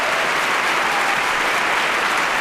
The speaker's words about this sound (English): Crowd is going wild. They're a little reserved, but they're picking up some steam. I want to hear the hooting and hollering.